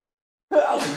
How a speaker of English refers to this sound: Bless you.